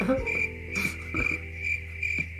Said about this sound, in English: No, that's a cricket and a butt-ems all in one.